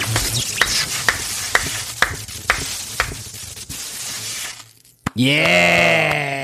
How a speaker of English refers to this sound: You've seen electricity now, too, motherfucker. Oh, my God. Zap.